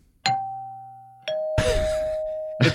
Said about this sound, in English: No, you don't have to ring the doorbell to leave, sir. That's only to come in.